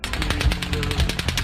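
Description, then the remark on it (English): A rapid burst of gunshots in Las Vegas, about a dozen sharp cracks fired in quick, steady succession over a low rumble, sounding at first like fireworks, with no talking. “But I knew right away that there were gunshots.”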